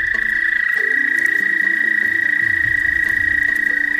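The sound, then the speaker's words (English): An American toad's long, steady musical trill, a breeding-season call in spring in the northeastern United States, rings out without a break, loud, over faint low background rumbles, with no one speaking. “this time of year is the breeding season for American toads”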